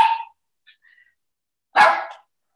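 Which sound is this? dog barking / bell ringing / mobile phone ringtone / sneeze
dog barking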